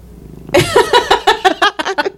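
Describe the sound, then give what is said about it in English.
A male cat on a table purrs loudly into the microphone, a rhythmic, pulsing rumble with a slightly voiced edge that starts abruptly and continues steadily, with no one talking. “the cat just jumped on the table”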